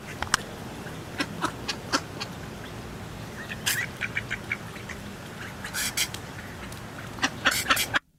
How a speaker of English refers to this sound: So, duck sneezing.